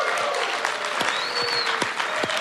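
A crowd at the 3-Up Live in Louisville radio show breaks into sustained applause, a dense, steady patter of many hands clapping at an even loudness, with a few sharper individual claps and faint whoops rising above the wash.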